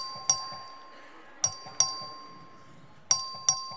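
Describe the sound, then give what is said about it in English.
A record vote bell rings five times in uneven pairs in the Texas House of Representatives chamber, each strike sharp with a short ringing decay, over a low murmur of room noise. “The clerk will ring the bell.”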